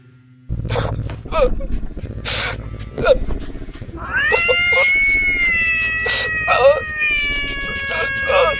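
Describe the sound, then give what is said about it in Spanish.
A cat yowls and meows loudly, drawn-out wailing cries rising and wavering, with a low rumbling purr underneath and a person talking at moments through it. “Hasta que después comenzó a ronronear y maullar de una forma infernal.”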